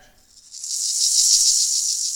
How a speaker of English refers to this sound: rattling maracas, a sound that would be saved for a virus that would haunt the ship in a later episode called The Naked Time.